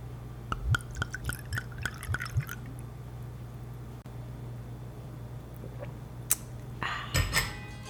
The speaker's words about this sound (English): I opened up the new wine that I received from Wine of the Month Club.